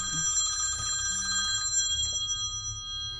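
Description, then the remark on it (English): A telephone rings as a call is placed to a singer, a single steady electronic trill lasting about a second and a half, then trails off into a faint hum; no one speaks. “We're going to get her on the phone right now and hear all about the show tonight.”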